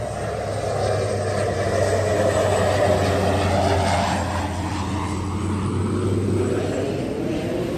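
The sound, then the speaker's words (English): A propeller plane drones loudly overhead as it comes in to land on an island's short runway, its steady low engine hum and rising whine swelling and then easing as it passes, with no talking. “Oh, here comes the plane coming in. Look. Oh, yeah, here. Coming in hot.”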